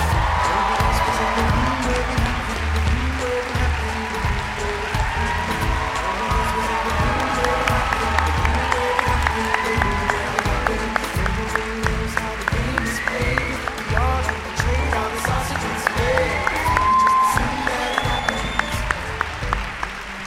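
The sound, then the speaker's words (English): A large audience bursts into sustained applause with whoops and cheers as Hamilton actors Leslie Odom Jr. and David Diggs are welcomed, a dense steady roar of clapping that stays loud throughout, with scattered high shouts rising above it. “Wow, I'm hearing some Hamiltonian love in the room.”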